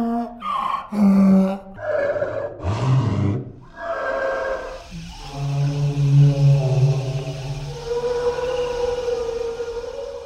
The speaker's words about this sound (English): For example, there was the gentle brachiosaurs. That's the one with the long neck for eating leaves out of tall trees. To create their sound, the designers took hawing donkeys, and they slowed it down until it became a graceful song.